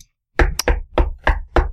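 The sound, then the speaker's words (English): Five firm knocks, a rap on a front door, in a steady, evenly spaced rhythm, each a solid thud with a sharp attack, with no voices. “Okay, so we're going to walk up to the front door and then rap on the front door.”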